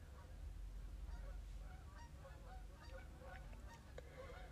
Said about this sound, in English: Where's the dog chasing the geese? Come on, man.